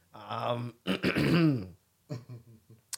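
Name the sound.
throat clearing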